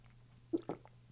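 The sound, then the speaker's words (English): Two quick mouth sounds, a soft sip followed by a swallow of water, set against a quiet, steady low hum with no talking. “Hang on, I just gotta take a sip of water real quick.”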